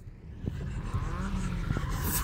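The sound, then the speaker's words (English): A learner driver maneuvers a car, turning tightly near a curb. The engine rumbles steadily, low and continuous, with a few brief sharp transients and a faint tire-scrub edge as the car moves slowly and unevenly. “Stay off the curb. Are you sitting? Turn the car! Right, go forward.”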